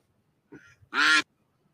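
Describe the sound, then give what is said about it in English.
A duck quacks twice in quick succession, a short softer quack followed by a louder, harsh, nasal one, with silence around it and no talking. “Would you say that's a brown bear duck? A bear duck, a duck bear?”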